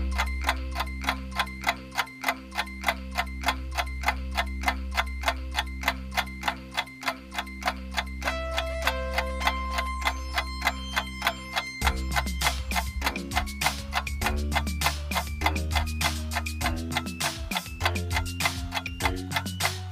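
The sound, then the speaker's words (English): A steady clock ticking counts down a 30-second quiz thinking time over a low, sustained musical backing. Around the midpoint the music grows busier and more rhythmic while the regular ticking continues, with no one speaking. “We're going to give you 30 seconds to think about your answers. The clock starts now!”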